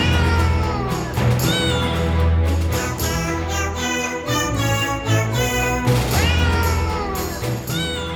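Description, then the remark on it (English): Cat meows ring out repeatedly over a dense, loud music track, their rising and falling cries woven into the steady instrumental backing throughout. “Like, in the track itself, I was sort of concerned that the meows would get overbearing.”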